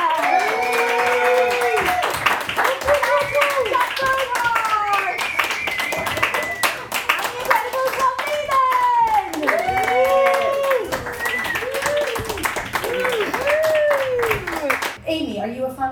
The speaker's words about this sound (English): So can you please give a big round of applause for our amazing act, the amazing Amy Howerska!